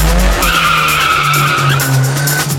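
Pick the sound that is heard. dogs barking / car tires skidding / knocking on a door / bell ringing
car tires skidding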